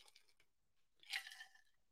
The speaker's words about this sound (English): I need to take a sip first. Hold on.